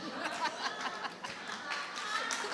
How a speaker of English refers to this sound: is clapping.